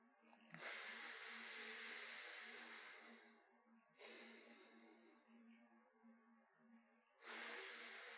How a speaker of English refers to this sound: We're gonna start by observing the flow of air in each of our nostrils. So you can start by blocking your right nostril and breathing in through your left. Let's do three breaths.